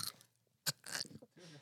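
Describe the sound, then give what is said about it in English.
Loud crunching of a Dorito tortilla chip being bitten and chewed, a sharp crack followed by a burst of brittle crackling and softer chewing. “It's like it'll be so crunchy that you won't even notice.”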